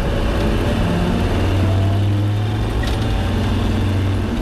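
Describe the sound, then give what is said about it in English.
The engine of a Land Rover used as a city food van roars steadily for the whole stretch, a loud, deep rumble with humming low tones that rise slightly midway, with no voices over it. “It's just nice to hear that roar of a Land Rover amongst them.”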